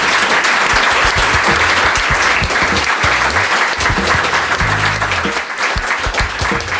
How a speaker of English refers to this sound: On that note, please give a big round of applause to Jigar Shah.